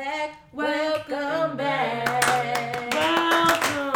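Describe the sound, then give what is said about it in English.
A burst of hand clapping, like welcoming applause, with sharp claps growing denser in the second half over a loud, tonal musical or cheering backdrop. “Round of applause.”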